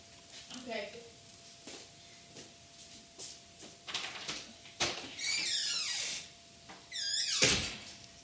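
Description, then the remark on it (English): A door is handled and opened, with clicks and knocks followed by squeaky, creaking sweeps as it swings; faint muffled voices and shuffling sounds are heard. “Can you get the door?”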